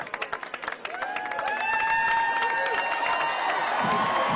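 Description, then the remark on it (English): A crowd cheers loudly at an event, starting with scattered claps before swelling into sustained shouting with shrill whistles ringing over the noise. “They're cheering.”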